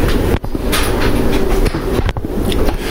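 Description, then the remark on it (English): A pressure cooker venting its built-up steam in a loud, continuous hiss with a rough, rushing texture, briefly dipping twice before surging again. No one speaks over it. “Yeah, that's the thing I wanted them to hear is the release of the pressure.”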